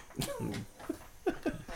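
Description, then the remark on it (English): A tinny, buzzy fart noise played by an old man from his phone speaker, a low sputtering blat followed by a few shorter squeaky bursts, fairly quiet. “He's a old ass man playing fart noises on his phone, and he's laughing to himself.”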